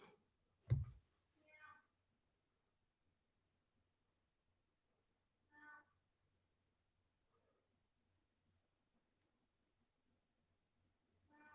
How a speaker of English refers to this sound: This is what happens on the, you know, RCR podcast. Sometimes the show gets interrupted by a cat.